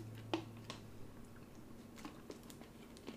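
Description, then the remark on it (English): Someone takes a quiet sip of water: a few soft, wet mouth clicks and a gulp, with a low steady hum behind and no talking. “And while you're doing that, I'm going to drink some water.”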